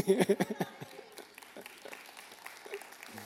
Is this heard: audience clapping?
yes